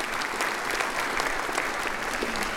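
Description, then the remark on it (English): An audience applauds steadily, a dense wash of many hands clapping at once that holds an even level throughout, with no voices rising above it. “Let's give Bob a big round of applause for his leading us in that effort.”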